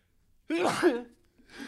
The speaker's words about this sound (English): Bless you.